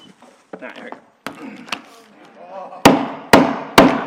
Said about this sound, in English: Can you see how rarely I use hammers?